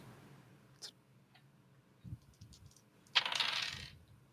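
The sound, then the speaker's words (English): A few faint clicks, then a bright burst of dice clattering and tumbling across a hard tabletop for under a second before settling, rolled for prowl checks in a tabletop game. No one speaks. “So ahead and give me some prowl rolls there, Steven. All right. Get the right dice.”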